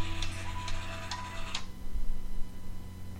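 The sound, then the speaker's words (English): A metronome ticks four times at a steady, brisk pace, each click sharp and bright, then stops, leaving a low steady hum underneath. “Metronome.”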